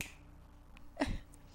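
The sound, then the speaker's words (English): A single crisp finger snap cracks out about a second in, sharp and bright, then fades quickly against a faint, steady low background hum. “You hear a snap.”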